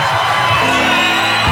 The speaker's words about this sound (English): TKO, technical knockout. The screaming turns to cheering.